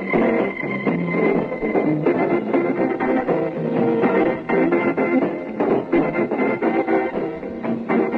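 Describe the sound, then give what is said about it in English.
Lively Hammond organ music with sustained chords and a swinging rhythm, sounding thin and muffled like an old medium-wave radio broadcast, steady and fairly loud throughout with no voices. Broadcast on Radio 355, 355 metres medium wave, on 3 August 1967 at 5 p.m. “The hammerman himself, hammering away at the Hammond organ there”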